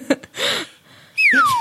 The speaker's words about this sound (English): You cannot play that slide whistle anymore. I have been overdoing it this episode.